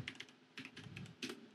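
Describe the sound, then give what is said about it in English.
Quick bursts of typing on a computer keyboard, a cluster of sharp clicky keystrokes in uneven runs with short pauses between, moderately quiet, with no voices. “You don't hear me typing right now, actually.”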